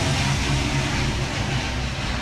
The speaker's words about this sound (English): Another plane is passing.